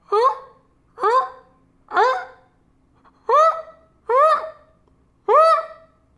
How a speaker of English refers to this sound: And so I go outside and these loons, those fucking Canadian geese, they're up on this apartment building. They're squawking.